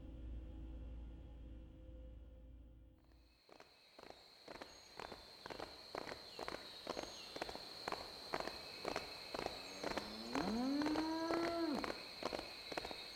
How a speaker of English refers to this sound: A light breeze blew across the Whitespring Resort, but the rustling of the trees was soon overwhelmed by the sound of marching boots, bots, and power armor, followed by the braying of the Brahmin.